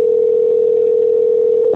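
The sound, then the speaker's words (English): A steady, loud electronic phone tone drones for nearly two seconds, the ringback heard while an outgoing call rings, with no voices over it. “I think we need to try to call Joel and see if he wants to help us out with this one”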